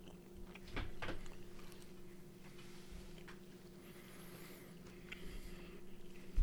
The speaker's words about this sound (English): So this is just the OG beef jerky flavor. Right off the bat, it's cut. Okay. Yeah. Like it was made and then it was like it got cut afterwards. Going in for the chew. Mm-hmm.